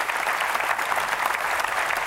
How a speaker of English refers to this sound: So can you give me a favor, and can you clap for you for planting a church in Ottawa this year? Come on, church, clap for yourself. Come on.